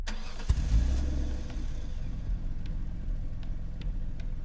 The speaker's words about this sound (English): Opens the door and sits in the driver's seat. Starts the engine.